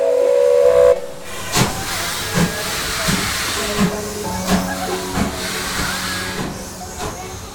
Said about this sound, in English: The Polar Express let out a loud blast from its whistle and sped away.